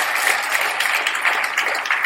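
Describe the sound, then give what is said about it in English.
A church audience claps steadily for a man marking 29 years of marriage, a dense, continuous patter of many hands at an even loudness with no voices standing out. “Come on, give him a big clap off of there.”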